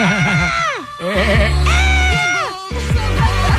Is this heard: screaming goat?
yes